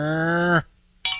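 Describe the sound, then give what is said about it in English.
A person imitates a cow's moo in one steady, droning note lasting about half a second, then a brief pause and a short, sharp clinking sound. “So, if you would do your best Moo impersonation.”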